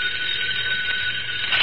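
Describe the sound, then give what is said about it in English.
A telephone in the private office of Britt Reed, publisher of the Daily Sentinel, rings early in the evening in one continuous, bright, shrill burst lasting under two seconds, steady and fairly loud, with no voices over it. “Early that evening, Britt Reed, publisher of the Daily Sentinel, sat in his private office signing letters when his phone rang.”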